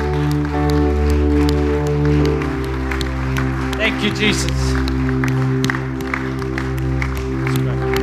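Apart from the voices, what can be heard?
audience cheering and applauding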